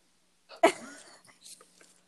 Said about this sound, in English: Bless you.